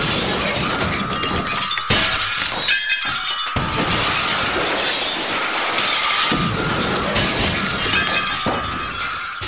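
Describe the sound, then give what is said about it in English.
Continuous loud glass shattering and crashing, with repeated smashes and bright, jangling shards falling in overlapping bursts throughout, as mirrors are broken one after another. “You guys keep bashing mirrors.”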